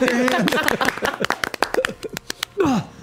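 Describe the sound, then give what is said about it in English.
A burst of sharp hand claps, uneven and somewhat scattered, rises over voices and brief laughter, then fades as a voice speaks again at the end. “Clap your hands if you believe.”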